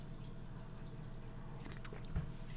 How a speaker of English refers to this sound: I have a can of hot coffee in my hands right now that I'm about to sip from. But it's hot, so I can't drink and talk at the same time. So it's going to be a few moments of silence while I sip my coffee.